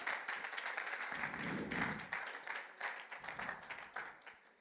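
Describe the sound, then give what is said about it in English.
An audience claps together as a hand clap of praise to the Lord, in a dense, steady burst of many hands, loud at first and gradually thinning out toward the end. “Give the Lord a hand clap of praise in this place.”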